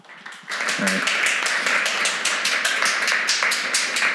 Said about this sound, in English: if you could just give him a little round of applause as we bring him up here.